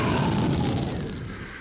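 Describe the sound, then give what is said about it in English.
A dragon's roar: a loud, deep, rumbling bellow that holds steady for under two seconds before easing off slightly at the end, with no voices present. “Did you hear that roar, Kilgannon? What manner of beast stalks us?”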